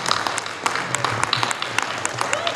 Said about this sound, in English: And another round of applause just for HC Bama for doing a bomb event and making sure that all the right people were here today.